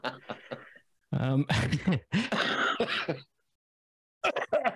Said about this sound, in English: I'm bringing this cough with me to Australia. It's cigarettes, not the vid.